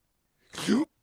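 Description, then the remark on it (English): A single short, breathy inhaled vocal sound, a voice imitating the Swedish inhaled way of saying yes, a quick gasp that rises into a slurping pull of air, lasting about half a second with nothing around it. “The noise is a cross between a gasp and a slurp.”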